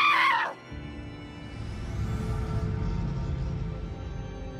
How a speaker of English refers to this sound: And then … starts screaming.